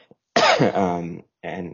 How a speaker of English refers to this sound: I have a little bit of cough in between.